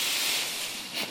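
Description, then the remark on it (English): A dense, continuous rush of paper being torn by many people at once as an act of worship, blending into a loud, hissy wash of ripping that lasts about a second with no voices. “we're going to rip this, and I just want this to be a sound of worship to heaven, the tearing of these lies.”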